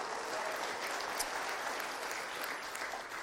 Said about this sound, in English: So give my family a round of applause. So thank you. Thank you.